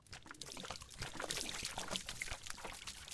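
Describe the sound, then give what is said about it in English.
Liquid pours out in a steady splashing stream for a few seconds, fairly loud, with a gurgling, bubbly texture and no voices. “Pour one out for the homie Spaghetti, dude.”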